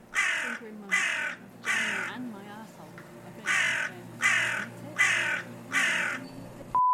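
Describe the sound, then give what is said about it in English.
A crow kept in a room caws loudly and repeatedly, about seven harsh calls in a steady rhythm, with faint background voices between them. “Do you not have another room for the crow to go in?”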